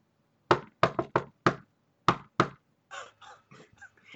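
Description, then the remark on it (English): Seven loud, sharp knocks of a staff on a stone door rap out a patterned rhythm, a quick cluster of five, then a pause and two more, followed by a stretch of softer, rougher croaking sounds. “And I pull out my staff, and I knock on it in a rhythm like this.”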